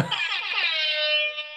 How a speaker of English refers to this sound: And I also got this new buzzer and I kind of want to, oh, it's off. Hold on.